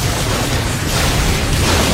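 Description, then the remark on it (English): A loud, continuous barrage of cannon fire from all of a spaceship's cannons firing during an attack, with heavy booming explosions blending into a dense, rumbling roar that holds steady throughout, with no voices. “All cannons, fire!”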